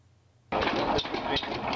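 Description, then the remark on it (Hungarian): After a brief silence, a Lorenz single-cylinder, 3.5-litre stationary engine starts up loud, chugging in a slow, steady rhythm of heavy thumps over a broad mechanical clatter. “van ott egy gyönyörű Lorenz stabil motor. Na jó. Egy hengeres.”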